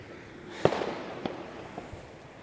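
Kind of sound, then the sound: sound effect, fireworks exploding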